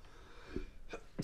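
A person sneezes: a couple of quick breathy intakes build up, then a sharp, loud burst of air bursts out at the end.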